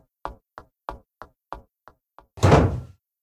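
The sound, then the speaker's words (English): A row of seven sharp, evenly spaced knocks, then a door swings shut with a loud, heavy thud. No one speaks. “Don't forget to shut the door.”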